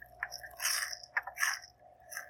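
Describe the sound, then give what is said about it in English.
Loud crunching bites into crispy fried chicken that was twice deep-fried and tossed in salt and pepper seasoning, with several sharp crackly bursts over a couple of seconds and no talking. “It sounds super crunchy!”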